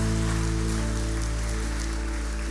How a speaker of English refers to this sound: Come on, give him a great big round of applause.